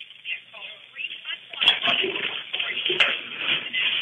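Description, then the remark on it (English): Water sloshes and splashes steadily for a few seconds as a bathtub is drained, heard muffled through a telephone line, with faint voices in the background and a couple of brief sharp knocks. “Okay, sir, did you remove the water from the bathtub? No, I haven't. Okay, take the moment to do that now, okay?”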